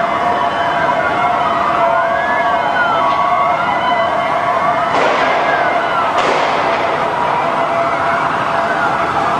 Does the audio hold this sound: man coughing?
no